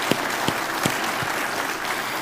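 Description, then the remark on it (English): An audience breaks into a round of applause for the staff: a dense, steady wash of many hands clapping, with a few sharper individual claps popping out at a loose, uneven rhythm. No one speaks. “So let's give the staff guys a round of applause.”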